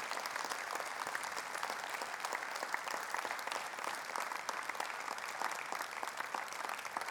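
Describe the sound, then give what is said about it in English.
A church audience claps steadily throughout as people come forward to be baptized, dense overlapping hand claps forming a continuous wash of applause from a large gathering, moderately loud with no talking over it. “And I always like for us to just give them an applause as they come.”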